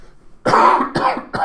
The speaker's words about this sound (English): I don't know why I always have to cough when I do this podcast or blow my nose.